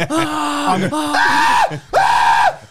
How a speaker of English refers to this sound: I'm just going to be screaming for like until my voice is gone.